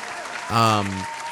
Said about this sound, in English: Let's keep clapping.